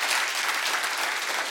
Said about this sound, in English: No, that's good. It's worth clapping for.